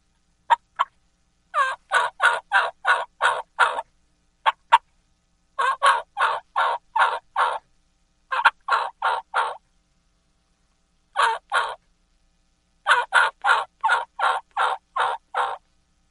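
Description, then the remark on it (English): A jake yelp, imitating a young gobbler, made on a turkey call: loud, raspy yelps in quick runs of four to seven notes, separated by short pauses, with no talking. “And just a little deeper whistle, a little deeper yelp, and boom, you have the Jake Kiki and Jake Yelp.”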